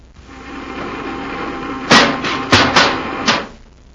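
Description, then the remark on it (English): A repeller ray blast: a steady electric buzzing hum that builds, then is punctuated by four sharp, loud crashing impacts as a Zarg robot is smashed against a tree trunk, before the hum cuts off. “The repeller ray smashed him against a tree trunk.”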